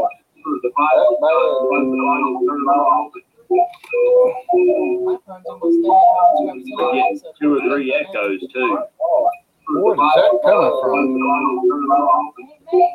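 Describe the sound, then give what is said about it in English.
Muffled voices play back through another device with its volume turned on, giving a hollow echo doubled two or three times with a faint steady tone behind them, running almost continuously with only brief gaps. “We're getting two or three echoes, too.”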